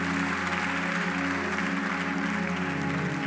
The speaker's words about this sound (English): Somebody give God a clap offering. Go and take an offering in your thing and come and drop it. Give God a better clap offering than that.